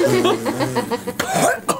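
A voice bursts into a rapid, choppy series of strained, laugh-like gasps, then breaks into two sharp, harsh coughs, fairly loud, like a performed coughing fit after swallowing a handful of fine, powdery dirt.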